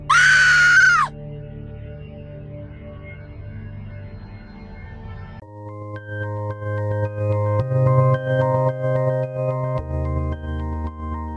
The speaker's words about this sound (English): screamed